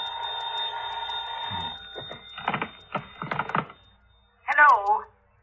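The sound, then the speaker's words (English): A telephone rings at about 3:30 in one steady, buzzing burst lasting about two seconds, then stops, followed by short bursts of voices and clatter. “Must have been about 3:30 when the phone rang.”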